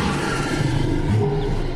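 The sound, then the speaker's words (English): A lion roaring: a deep, rough, sustained growl that stays loud and steady for nearly two seconds, with no one talking over it. “A cruciferous vegetable. Or a lion.”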